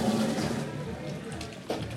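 toilet flushing

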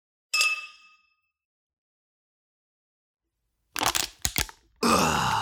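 clinking drinks together

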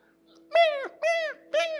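cat meowing

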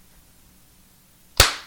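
hand clap

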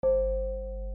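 gong sound effect

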